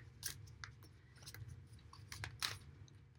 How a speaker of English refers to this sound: And this week I am using my Gilded Royale Tarot by Sarah Marchetti. So, to begin, I'm going to give my cards a little bit of a shuffle, and then I will select three from the top.